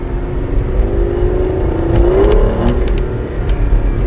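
A car engine revs up steadily as the driver uses the paddle shifters, its pitch climbing before dropping sharply as the gear changes, with a few sharp pops, all over a loud, continuous rumble of road and engine noise. No one speaks.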